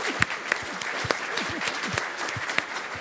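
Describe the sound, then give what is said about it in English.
An audience at a David Astle session clapping steadily, a dense crackle of many hands with a few sharper claps standing out, and faint voices murmuring underneath. “That applause probably says something.”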